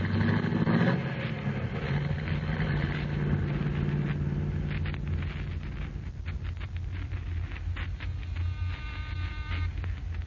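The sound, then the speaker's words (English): A car engine starts up and pulls away, its low rumble rising briefly before settling into a steady drone that carries on for several seconds with no one talking. “Here's my car. Get in, gentlemen.”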